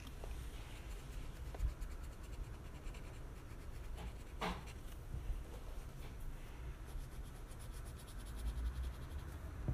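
Steady rubbing of a paper stump across drawing paper, a soft continuous scratchy texture broken by a few brief, sharper strokes. No one speaks.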